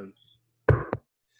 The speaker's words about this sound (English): Knock on lots of wood.